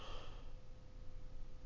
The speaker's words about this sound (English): Oh my God, who's yawning? Stop it. Nobody's yawning over here.